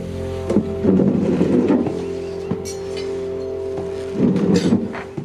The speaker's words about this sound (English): Also, at one point when they're at Charlie's house, someone pulls out a chair, and I swear someone dragged a chair for 10 straight seconds because you just hear.